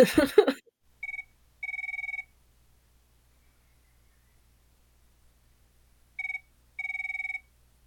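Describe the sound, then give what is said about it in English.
A telephone rings in two double bursts, short then long, separated by a pause, after a brief burst of noise at the start, as a call is placed for a Tuesday phone-a-fashion-friend segment. Steady electronic ring tone over a faint low hum. “It's Tuesday, phone a fashion friend.”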